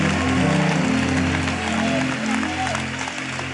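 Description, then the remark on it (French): A crowd applauds for the Bible steadily for several seconds, a dense, even wash of many hands clapping at a constant loudness, with a faint low hum running underneath. “Clap for the Bible, the great word of God, the Bible that has been released into the world.”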